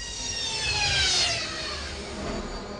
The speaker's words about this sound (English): Bane throttled back the swoop bike's engine as they approached the small clearing that served as the Valsim's landing site